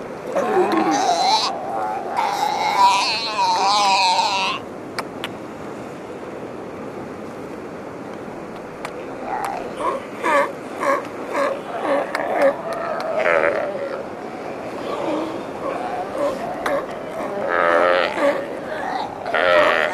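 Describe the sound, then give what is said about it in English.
Newborn sea lion pups and their protective parents call on Santiago Island over a steady wash of surf, with wavering, bleating cries in bursts: a loud cluster at the start, then a quieter stretch, then repeated calls through the end. “And this sound captures a bunch of newborn pups along with their protective parents on Santiago Island.”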